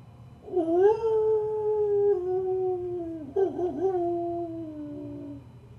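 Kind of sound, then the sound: animal, wolf howling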